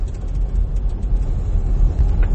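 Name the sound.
car engine sputtering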